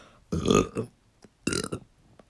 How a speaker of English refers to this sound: Sorry, I'm going to burp.